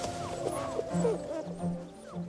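Young wolf pups yip and whine in a rapid tangle of high, sliding cries, several voices overlapping over a steady low background hum.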